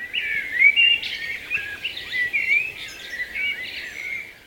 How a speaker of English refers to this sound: Birdsong captured in the foothills at dusk. There's nothing quite like it.